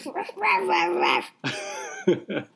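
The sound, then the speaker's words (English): A voice imitates a small dog's loud barking: a long, drawn-out yelp, then a second call and a couple of quick, sharp yaps. “Now, what if a little dog is making a loud sound? What does it sound like?”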